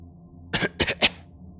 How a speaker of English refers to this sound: Coughs.